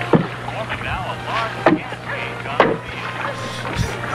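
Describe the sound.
A boat bumps against a dock in several hollow knocks spaced about a second apart, heard over soft background music with faint murmuring voices.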